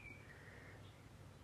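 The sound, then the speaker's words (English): A faint, thin bird whistle drifts slightly downward, with a brief higher note after it, over a steady low background hiss: birds singing on a rainy morning. The birdsong is quiet, and no one speaks. “I'm sitting here this morning, lighting my candle in my sacred space at home, listening to the rain and the birds singing their songs.”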